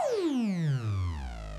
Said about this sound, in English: As we go down, you'll notice those little stair steps come in, and you get this weird, like, high frequency distortion. Nice thing about it is that it's actually completely related to the frequency of the input.